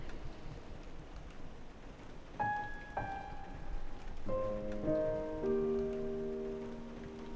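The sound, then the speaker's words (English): Heavy rain drums steadily and densely on a boat roof, filling the whole recording, while a few brief ringing, pitched tones sound partway through. No one speaks. “I can hear the rain hitting hard against the roof of my boat.”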